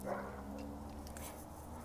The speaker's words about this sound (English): Big dog.